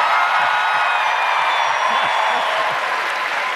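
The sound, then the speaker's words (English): A crowd in Richmond, Virginia lets out a rebel yell, a loud, sustained roar of many voices whooping and hollering together, holding steady for several seconds with what sounds like scattered clapping mixed in. “That, I presume, was the rebel yell I've heard so much about.”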